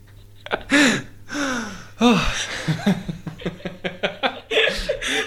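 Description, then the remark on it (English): A series of loud, theatrical gasps, breathy and drawn out, interspersed with quick chuckling breaths and short vocal bursts, clear with no words spoken. “I've got the sexy gasp.”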